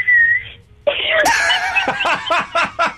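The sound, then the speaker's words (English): A person imitates baby starlings cheeping: a brief high whistle, then a run of squeaky, rising chirps repeated in quick, uneven bursts, fairly loud. “I like it when all the baby starlings have been born and they hop around nicking all the food off all the other birds, cheeping.”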